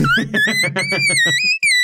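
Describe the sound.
A voice produces a thin, piercing whistle tone that wavers and climbs in pitch, with a buzzy, pulsing low vocal sound underneath, like air squeaking out of a balloon for about two seconds.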